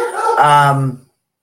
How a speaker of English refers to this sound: Because I have a nose, a dog nose pushing in here. He must hear my guy, Marley, barking. I'm going to have to shut the door if he misbehaves.